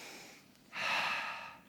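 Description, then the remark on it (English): A slow, deep breath drawn in: a faint airy breath first, then a longer, louder inhale that holds steady for about a second, with no talking. “So take a deep breath.”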